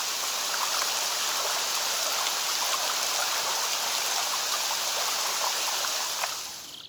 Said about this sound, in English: Rain on the Loch at Eileen Donan Castle in the Scottish Highlands.